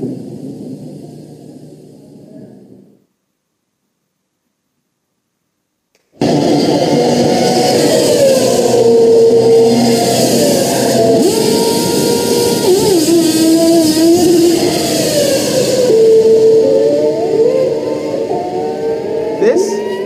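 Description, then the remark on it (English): A racing car driven by Holland roars to life and pulls away from a pit stop 67 seconds after stopping, as a crewman polishes the windshield; loud and sustained, its pitch climbing and shifting over a noisy backdrop. A brief muffled voice and a short silence come first. “A crewman polishes the windshield as Holland moves away just 67 seconds after he stopped.”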